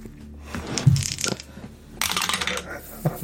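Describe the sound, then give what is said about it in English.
Dice rolled for a poetry roll clatter and rattle across a hard tabletop in two short bursts, a sharp tumbling patter that settles quickly, with faint voices murmuring underneath. “or pitch to do a poetry roll to see if I recognise this as some sort of literary illusion.”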